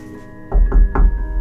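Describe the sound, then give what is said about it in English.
Three firm knocks on a door in quick succession, fairly loud with a dull, hollow thud, over a faint steady background hum. “It was the door again.”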